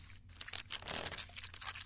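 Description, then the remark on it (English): Wet crunching and chewing by a creature with 40 eyes, a steady run of crisp bites and grinding mastication lasting a couple of seconds with no talking. “Okay, go on. Chew.”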